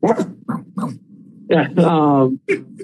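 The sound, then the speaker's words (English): A person imitates a dog barking: a handful of short, gruff barks followed by a longer drawn-out growling bark and one final yap. “I have heard you barking, though, in the background.”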